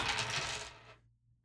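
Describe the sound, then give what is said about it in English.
Dice clatter and tumble across a hard surface for about a second, a loud rattling burst that quickly settles into silence. “The dice saith, coffee it shall be.”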